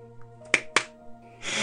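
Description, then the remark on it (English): Two sharp, bright hand claps about a quarter second apart, standing out over a low steady hum, followed by a swell of loud hissing noise. “She really wants this clapping thing to go down.”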